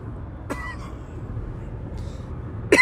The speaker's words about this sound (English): Excuse me. Coughing over here.